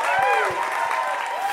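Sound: audience applause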